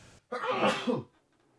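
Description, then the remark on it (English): A single loud sneeze from a person with allergies and a cold bursts out after a brief quiet moment, a sharp explosive blast of breath that lasts under a second before fading into silence. “Bless you.”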